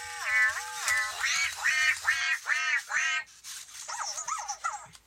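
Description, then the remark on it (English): A toy robot performing a duck action plays a recorded duck quacking sound: about six loud, nasal quacks in quick succession, followed by a few softer, wavering quacks, with no talking. “So he's got like frog. Elephant, ghost, duck.”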